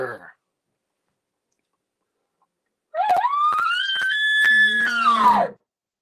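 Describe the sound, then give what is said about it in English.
A person imitates a bull elk's advertising bugle, a shortened location bugle with a growl on the end, made to attract cows. A short rising whistle is held high for about two seconds, with sharp clicking grunts and a rough low growl toward the end. “But an advertising bugle, now shorten it up a little bit, shorten it up and growl.”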